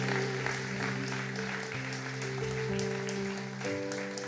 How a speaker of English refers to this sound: Come on, church. Let's give them a big hand.